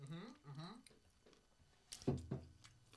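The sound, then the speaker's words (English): Chewing spicy chicken: a few wet, crunchy bites land near the end, after some drawn-out voiced murmurs at the start. “Let me get some chews in.”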